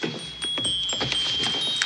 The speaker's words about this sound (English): And then we get something new. Scrooge's pocket watch chimes a very distinct chime.